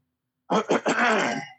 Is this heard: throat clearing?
yes